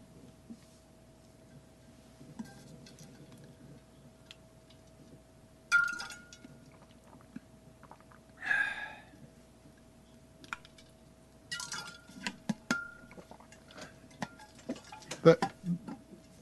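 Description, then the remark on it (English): Ice cubes rattle and clink inside a metal water bottle in a few separate bursts, with a busier cluster of sharp knocks near the end over a low, steady hum. “Your water bottle is a very layered sound effect.”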